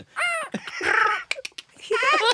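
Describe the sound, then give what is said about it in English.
A person imitates a parrot with loud, raspy squawks: a drawn-out screech, a few short clipped chirps, then another harsh squawk, clear with no other talking. “Ah, I do parrots.”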